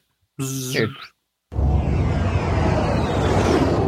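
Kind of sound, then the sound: sound effect, whoosh sound effect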